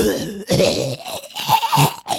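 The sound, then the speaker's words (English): A voice imitates a General Grievous cough: a raspy, hacking cough in several harsh, gravelly bursts with short breaks between them, fairly loud, with no talking. “Can you get a General Grievous cough right here?”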